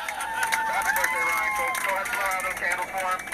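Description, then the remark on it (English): Airplane passengers applaud after landing. A steady spatter of clapping runs throughout, mixed with cheering and excited voices filling the cabin at an even level. “And she sent the sound of airplane applause. So I guess when they landed, the entire plane burst out in applause.”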